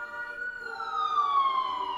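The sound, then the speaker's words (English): An ambulance siren wails steadily as it passes along Amsterdam Avenue in New York, the thoroughfare to Mount Sinai hospital, its pitch sliding gradually lower while it moves by, fairly loud, with no one talking. “Hear it? That's a normal siren.”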